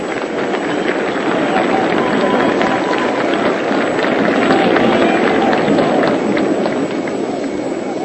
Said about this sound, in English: And here is Bill Dickey walking up toward the plate. Two men are on. The St. Louis fans are applauding Dickey.